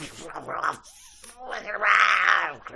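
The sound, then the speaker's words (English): A person imitates dogs, growling and snarling in two rough, strained bursts, a short one then a longer, louder one, with no other sounds around. “Now … is dogs.”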